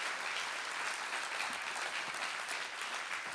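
A church audience claps for the Lord at a Sunday morning service, in a dense, steady wash of applause, many hands blending into a bright, even roar that holds at full loudness throughout with no talking over it.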